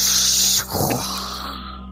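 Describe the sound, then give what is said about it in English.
At the Relax, Rooster massage parlor, a voice imitates ocean waves with a loud, breathy shushing hiss that breaks briefly, then swells into a lower rushing wash and slowly fades out over about two seconds. “The ocean.”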